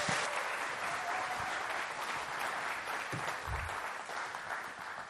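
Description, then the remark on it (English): Steady applause from a crowd, many hands clapping in a dense, continuous patter at an even, fairly loud level for about five seconds, with no voices standing out. “Let's give these guys another round of applause.”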